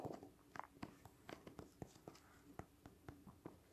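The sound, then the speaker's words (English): Quick, irregular clicks of typing a web address on a keyboard, a steady patter of soft keystrokes with brief pauses, heard alone without any talking. “I like how I'm typing the entire URL, just because I'm so goddamn lazy to just, I don't know, switch it up.”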